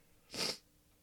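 A single sharp sneeze bursts out, a quick breathy blast lasting about a quarter second before quiet returns.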